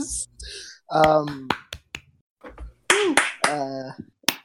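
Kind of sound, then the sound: human body sound, one person clapping hands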